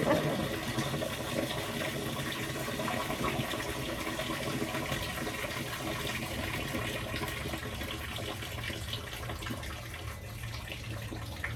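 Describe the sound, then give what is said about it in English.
A small waterfall flows steadily, a continuous rushing, splashing wash of water that stays at an even, moderate loudness with no voices. “We have a little waterfall. It comes and goes.”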